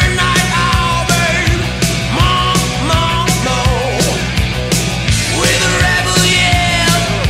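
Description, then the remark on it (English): A loud 1983 rock song plays with a male singer letting out raw, shouted yells over driving drums and distorted guitars, the vocals rising and falling in strained bursts. “I love that he's got a great sneer and a great yell.”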